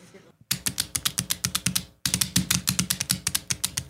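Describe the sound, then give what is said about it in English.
A dog's footsteps: quick, evenly spaced clicking taps of claws, crisp and fairly loud, running in two bursts with a brief pause between them. “These are the footstep sounds of which animal? A dog, a lizard, or a duck?”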